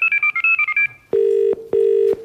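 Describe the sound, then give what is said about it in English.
A rapid run of about eight short touch-tone beeps as a telephone number is dialed, followed by two long, steady ringing tones on the line, with the call going unanswered. No one speaks. “He's not answering.”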